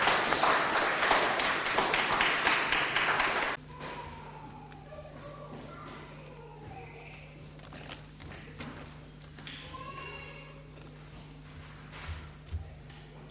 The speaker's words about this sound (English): Yes, so let's give you a round of applause as you take them off.